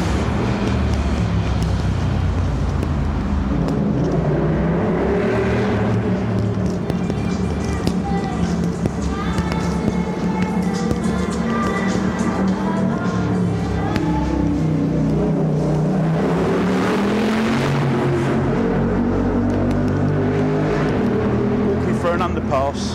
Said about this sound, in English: Traffic. Jesus, that was noisy.